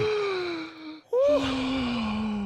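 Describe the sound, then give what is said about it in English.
Two drawn-out, voiced gasping breaths: a long falling exhale, a brief break, then a sharp intake leading into another loud, sustained breath. No talking. “Like, panting.”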